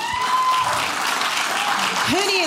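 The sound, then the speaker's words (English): An audience claps steadily in a dense, continuous wash of applause, as those who have raised both boys and girls answer a speaker's question, with a few voices and whoops rising faintly above it. “And who in here has had boys and girls? Can you clap?”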